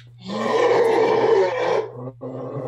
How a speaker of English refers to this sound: Oh, my doggy doesn't do that. She doesn't do that. That's cool. It's his death growl. All right. I love it. Oh, my God. That is so intimidating.